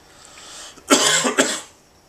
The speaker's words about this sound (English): don't hit the mic stand. I didn't mean to. Stop coughing into the mic stand.